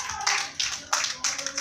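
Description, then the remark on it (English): An audience claps for a woman who has just spoken, in a steady rhythm, four bright, crisp bursts of applause landing roughly a third of a second apart over a continuous wash of hand noise. “So once again, clap for her.”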